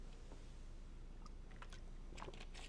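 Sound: drinking water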